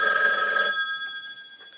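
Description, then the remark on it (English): A telephone in a house rings with a bright, sustained electronic trill for under a second, then its tones linger and fade, ending with a short click. It is fairly loud, with no voices. “Yes, so she starts getting calls that ask her, have you checked the children?”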